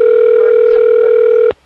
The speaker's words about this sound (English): I don't know what phone's ringing. I don't know either. I think it's my cell phone.